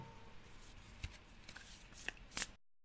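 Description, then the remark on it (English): Oracle cards being shuffled, a soft papery riffling with several sharper flicks and snaps near the end, quiet and continuous with no voices over it. “And I'm going to shuffle for you again. And this deck that I'm using is the Awakened Soul.”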